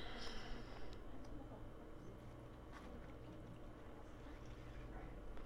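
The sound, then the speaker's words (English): Lemonade pours steadily over honey lavender syrup and ice in a cup, a soft, continuous liquid splash lasting several seconds at low volume, with a faint murmur in the background. “And then we'll pour our lemonade in.”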